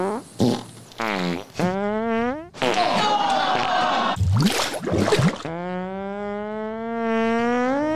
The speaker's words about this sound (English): Those are cat farts.